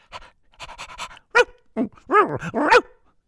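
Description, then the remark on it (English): A lively brown and white Springer Spaniel named Wouter, dashing about at someone's feet, pants in quick, breathy bursts, then lets out several short, rising whines and yelps. No one speaks. “There's a lively brown and white Springer Spaniel dashing about at his feet.”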